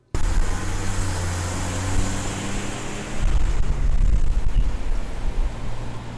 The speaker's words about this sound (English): West State Street is occupied by a moderate amount of traffic. It lies just off North Washington and Court Streets.